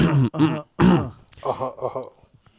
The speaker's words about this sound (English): So I'm going to clear my throat.